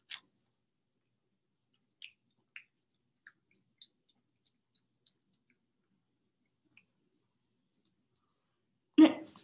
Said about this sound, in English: Here. I can show everybody you eat your doggy soup. Then will you then eat it? You just want to be showcased? This is his doggy soup. This is him.